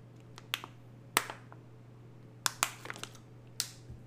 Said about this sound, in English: Let me take a swig of my water first. Hold on.